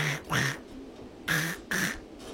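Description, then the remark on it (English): A person does a raspy, sputtering Donald Duck voice, imitating him choking on an apple, in four short, strained bursts with brief pauses between them. The voice is fairly loud, with no other sounds. “Donald Duck choking on one apple?”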